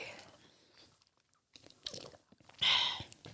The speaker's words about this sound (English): I mean, well, I'm chewing the fuck out of this cookie.